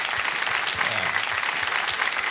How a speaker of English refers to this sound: Have a nice round of applause again for the veterans.